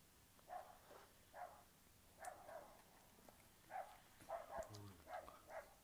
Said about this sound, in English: Damn, what the hell were their dogs barking? Those are my dogs, huh? Yeah. Damn, now I gotta shut this window because that's all you hear in the microphone. This is my damn dogs barking.